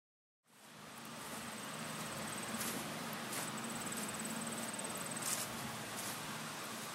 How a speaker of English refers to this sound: Autumn is here. There's a crisp breeze in the air, the sound of bees buzzing happily amongst the trees of an apple orchard.